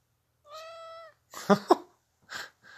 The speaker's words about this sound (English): hey, kitty, what's up? Say hello, kitty.